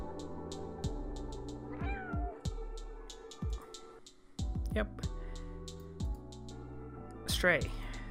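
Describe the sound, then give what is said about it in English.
A cat meows three times in a pre-rendered trailer for a cat simulator video game, with short, rising cries spaced a few seconds apart, over steady background music with deep thumping beats. “It's a cat simulator, and of course, why wouldn't you like it?”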